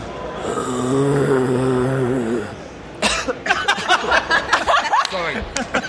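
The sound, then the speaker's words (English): A low, drawn-out guttural moan gives way to a flurry of rasping snarls, gasps and choking hisses: a genuine zombie vocalization from a commercially released video game, loud, with no talking. “Well, I mean, my first guess is Left 4 Dead. But it sounds like a zombie.”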